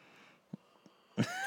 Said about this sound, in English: Wow, that was on cue. It was a cued yawn.